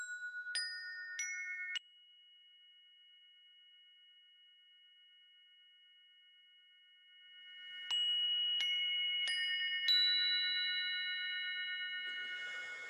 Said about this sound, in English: Actually, I got the chimes, so I'm just going to ding these things. This is perfect sound and frequency. So let's give them a ding.